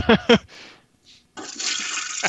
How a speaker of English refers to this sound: Do you guys want to flush the toilet with me?